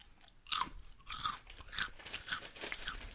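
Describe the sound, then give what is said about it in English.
Crunchy chewing of hot Cheetos right against the microphone, with about five loud bursts of crunching in a steady rhythm and no talking. “Why are you chewing into the mic?”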